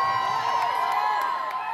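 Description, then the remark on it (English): A crowd of about 80,000 people at the School Strike for Climate march down Queen Street, Auckland, on 15 March 2019, cheering and shouting together, a dense, steady roar of many overlapping voices that holds at a strong level for the whole short stretch without a break. “And that was 15th of March 2019, 80,000 people marching down Queen Street.”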